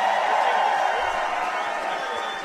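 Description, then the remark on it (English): A crowd applauds a team of players for their 2023 season, a steady, dense wash of clapping and cheering that holds at an even, fairly loud level for the whole couple of seconds with no talk on top. “One more round of applause for these guys for 2023, will you?”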